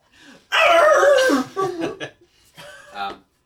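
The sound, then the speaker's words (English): A voice imitates a feeble wolf yelp: a loud, drawn-out whine that sags in pitch, followed by a few shorter, broken whimpers. “You hear a very weakening yelp.”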